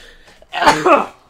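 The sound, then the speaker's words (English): A single sneeze, a sharp two-part burst of breath and voice lasting about half a second, preceded and followed by quiet room tone. “After a sneeze.”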